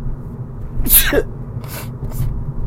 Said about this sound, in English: Oh, y'all forgive me. I might not upload this one. I'm sneezing and sniffing way too much in y'all ear.